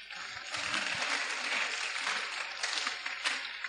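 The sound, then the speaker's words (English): A church audience breaks into steady applause for the Lord, many hands clapping together in a dense, continuous patter that holds at an even level for a few seconds. “Clap for the Lord.”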